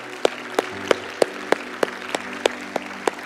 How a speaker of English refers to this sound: Amen. Amen. Let's give God a round of applause today, can't we?